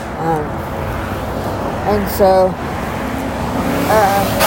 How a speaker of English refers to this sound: Oh! Wow. Car just scraped as he flew by.